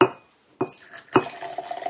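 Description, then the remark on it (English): Three sharp glassy clinks, spaced about half a second apart, followed by a steady gurgling pour of Jack Cane's Royal Sovereign Rum into glasses, a little tot each, with no voices. “And we'll have a bit of rum because this is, after all, bum-pooings.”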